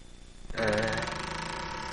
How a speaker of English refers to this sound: You know what the door will sound like, right? Yeah.